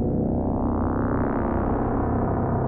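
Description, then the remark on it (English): A harsh, grinding angle-grinder drone plays steadily and loudly through delay and reverb from a Make Noise Mimeophone with the halo cranked, its gritty buzz thickening as the upper edge sweeps upward, then holding. No voices are present. “And then I also forgot to mention, this is all just the angle grinder, but we are listening to it through the Make Noise mimeophone just for some delay reverb.”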